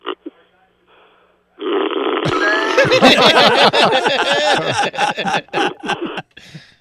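A man on hold during a phone call to a radio show snores: a long, loud, rattling snore over the phone line, harsh and guttural, rumbling for several seconds before breaking into choppy bursts and trailing off.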